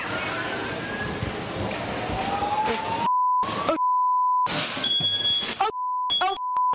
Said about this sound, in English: This young woman is live streaming herself cooking, but it's not going so well. She's causing so much smoke, she sets off the fire alarm in her building.